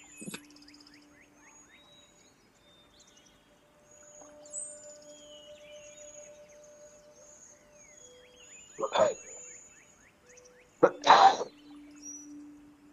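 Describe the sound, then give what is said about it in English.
Two sharp, loud sneezes burst out a couple of seconds apart, over a quiet background of faint high chirping and a low steady hum. “Bless you.”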